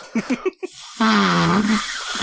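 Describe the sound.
Several short puffy bursts, then a sustained buzzy, low-pitched fart noise made with the mouth or arm, wobbling slightly in pitch for nearly a second before trailing off.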